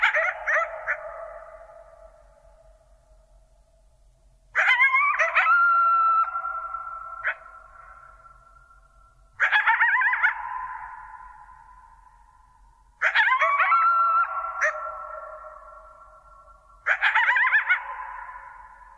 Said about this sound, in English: And to me, it sounds like a celebration. But the point that I think that they really bring out is that if there were the slightest jet rumbling in the background, the experience of these coyotes would be entirely different.